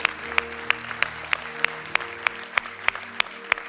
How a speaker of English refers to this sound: Can we give a hand clap of praise to our great God?